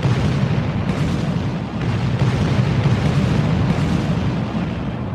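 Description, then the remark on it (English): A sustained barrage of heavy cannon fire from two fleets of sailing ships firing on each other, with deep overlapping booms merging into a continuous loud rumble for several seconds and no pauses or voices. “Just imagine the deafening sound of these ships unloading cannon fire on each other.”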